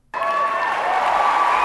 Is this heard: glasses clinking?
no